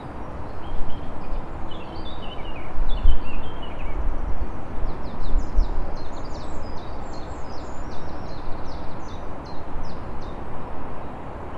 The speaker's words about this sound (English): So we're expecting to hear quite a few. The calls that you can hear will be robins. We've got great tits and probably a wren in there as well, a little trill kind of call there.